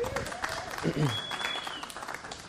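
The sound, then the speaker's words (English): A crowd claps steadily in a dense, continuous wash of applause, with a few voices and whoops rising over it throughout, during baptisms at Cross Point. “And you can clap too, it's okay.”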